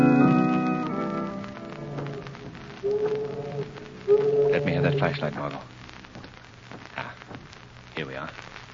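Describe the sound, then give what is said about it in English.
Tidal water of a river rushing out to sea under old empty tenements built on piles on South Street makes a steady, churning hiss that runs throughout, while a few sustained musical tones fade in and out over it near the start and middle. “Lamont, do you hear that water? Yes. These old empty tenements are built on piles over the river. It's the tide rushing out to sea.”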